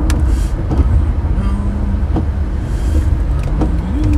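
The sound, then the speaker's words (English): Road traffic heard from inside a moving car: a loud, steady low rumble with an engine drone that slides up and down in pitch, from a truck behind the car, which has just switched lanes in front of it. “There's a truck behind me, and I just like switched left in front of him, and I switched right in the lane again.”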